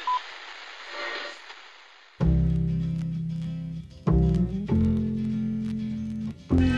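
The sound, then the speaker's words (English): A mobile phone goes off for the second time: after a moment of faint hiss, loud electronic ringtone notes sound in sustained, shifting blocks, clear, with no one talking. “What phone is that? That's the second time it's gone off.”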